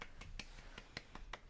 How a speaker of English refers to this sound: That's my light applause. So as to not blow out our listeners' eardrums.